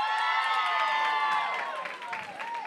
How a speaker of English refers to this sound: Let's do by a round of applause. Who likes these shoes?